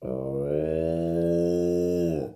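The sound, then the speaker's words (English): A person imitates a cow with one long, steady, low moo held for about two seconds, loud, with no other sounds around it. “Wait, I was supposed to be a cow.”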